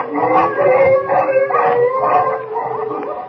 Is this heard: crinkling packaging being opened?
no